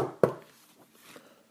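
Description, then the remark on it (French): The wolf knocks on the door of Nouf-Nouf's house: a single sharp, hollow knock on a wooden door rings out, followed by a few much fainter taps trailing off into quiet. “Puis soudain, le loup frappa à la porte.”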